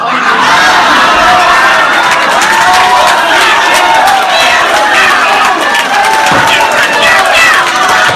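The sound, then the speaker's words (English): A large crowd at a city council meeting erupts in uproar after a speaker refers to his own group as racist; overlapping shouts and yells form a loud, continuous, chaotic din with no pauses. “He fucked up and referred to his own group as racist, and the crowd went crazy.”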